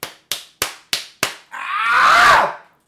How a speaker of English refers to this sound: The slapping was too much.